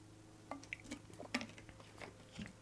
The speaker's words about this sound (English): Hold on, drink time. Sip, sip.